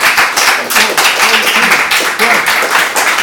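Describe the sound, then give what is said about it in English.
An audience applauds after a short acted scene from Miss Julie, with dense, steady clapping that fills the whole stretch, loud and continuous, with faint voices murmuring underneath. “I'd like to give you a round of applause.”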